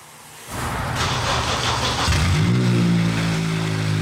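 A Prius engine starts and roars loudly with a harsh, rumbling exhaust, its pitch rising steadily as it revs up, with no one speaking; its catalytic converter, which connects the engine to the muffler, has been sawn out by thieves.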